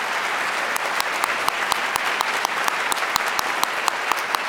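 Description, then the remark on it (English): An audience applauds Professor Pedro Noguera after his talk at UW's Kane Hall in Seattle, a dense wash of many hands clapping with sharper individual claps popping out, sustained at an even loudness throughout without any talking. “Can we have one more round of applause for Dr.”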